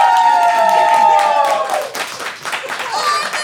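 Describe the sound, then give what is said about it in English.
A loud crowd at a wrestling show cheers and claps for a few seconds, making noise to vote that wrestling is real. Sustained yells ride over dense clapping at first, then fade, leaving steady applause with scattered shouts. “If you believe that wrestling is real, make some noise!”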